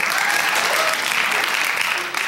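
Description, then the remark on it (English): A burst of loud, dense applause with cheering voices, steady and continuous throughout, sounding like a sizable crowd with no clear speech. “So big cheer for Sandhya.”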